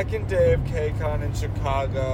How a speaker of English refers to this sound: And as you probably already can hear, we're on the road. Yep, this is all in the car. So, driving on the road again.